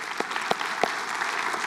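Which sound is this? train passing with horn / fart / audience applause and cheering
audience applause and cheering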